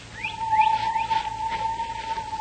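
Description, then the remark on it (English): A person in the jungle of Malaya imitates a bird call as a signal: a sustained whistled tone with a series of quick rising chirps repeating over it, moderately loud, with no talking. “So what? Another bird woke up. There wasn't any bird I ever heard here in Malaya.”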